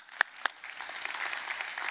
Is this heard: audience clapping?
yes